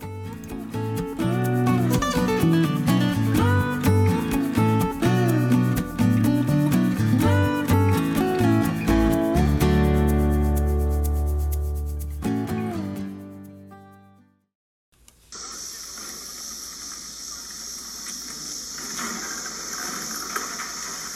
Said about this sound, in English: That was the sound of a Norfolk Southern rail bridge crashing into the Grand River in Brunswick, Missouri. It happened on a Tuesday, October 1st. A surge of drift came down the Grand River and built up on the piers.